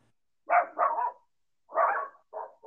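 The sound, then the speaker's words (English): Dogs barking in short bursts: a quick double bark, a pause, then another bark followed by two shorter ones. Clear, with no talking over them. “I apologize for the dogs.”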